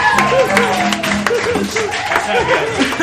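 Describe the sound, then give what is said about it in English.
A crowd claps and cheers loudly and steadily for about three seconds, with scattered whoops and shouting voices rising over a dense wash of applause. “Everybody just yell, keep it going”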